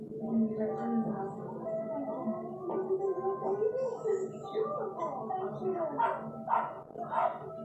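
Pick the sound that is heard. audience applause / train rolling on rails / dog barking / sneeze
dog barking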